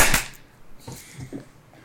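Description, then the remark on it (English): Several people clap their hands together almost in unison on a count of 3, 2, 1, to sync a recording for editing, making one loud, sharp, slightly smeared smack at the very start. Faint, low murmuring voices follow. “We're all gonna clap. 3, 2, 1, clap.”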